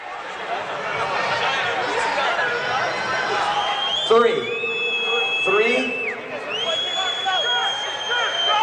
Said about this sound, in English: It starts off with a sample of something like a sound check or something like that. There's a crowd, and there's a guy who's getting frustrated with the crowd saying, fuck this shit.